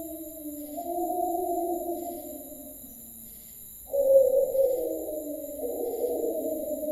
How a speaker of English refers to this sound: What the hell was that? Our friend the wolf again.